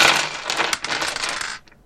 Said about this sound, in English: Oh, he's rolling a lot of dice. We're playing Shadowrun.